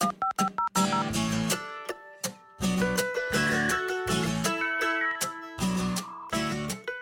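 Upbeat instrumental theme music opens with a few quick beeping tones, then rolls into punchy rhythmic chords over a steady bass line, loud and close, with no voices.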